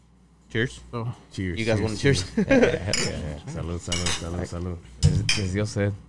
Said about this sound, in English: Cheers. Cheers. You guys want to cheers? Yeah. Salud, salud, salud, salud.